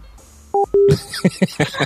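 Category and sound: signal or alarm, phone hanging up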